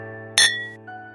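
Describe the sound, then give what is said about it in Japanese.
A bright glass clink rings out once, sharp, as glasses of whiskey are raised in a group toast at a bar counter, followed by a lingering tonal ring and a softer second touch, over a steady low hum in the background. “このお客さんにウイスキー一杯、みんなで乾杯です。”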